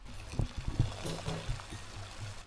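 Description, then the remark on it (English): A big pot of water at a rolling boil for cooking pasta, bubbling and gurgling steadily with irregular low pops and a constant watery hiss. “And so the first thing you do is get a big pot of water to a rolling boil.”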